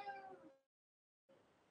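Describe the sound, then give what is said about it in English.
A single drawn-out cat meow, fairly quiet, fades into a brief silence before soft, indistinct background noise returns. “Kitty.”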